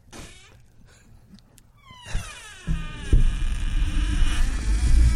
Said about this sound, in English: God, why won't that person just... Why won't they grease up their door? That person needs some WD-40, I think.